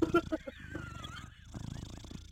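A cat purrs right up against the microphone, a steady, rumbling, pulsing drone that rises and falls with each breath, loud and close throughout.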